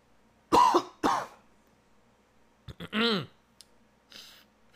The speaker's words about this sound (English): I got a cough again. Hold on.